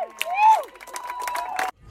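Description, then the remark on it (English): A crowd of wedding guests cheers and claps just as the couple are proclaimed husband and wife, with high whoops and rising shouts over a dense wash of applause, lasting under two seconds before cutting off abruptly. “We've been crying. We've been cheering.”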